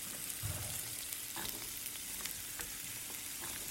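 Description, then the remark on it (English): Food sizzles and fries steadily in a pan, a dense crackling hiss with a few sharper pops and a low thump early on, moderately loud with no voices. “Oh, sizzling.”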